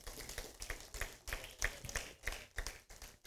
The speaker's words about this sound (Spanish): Un aplauso por los padres que están aquí. Amén.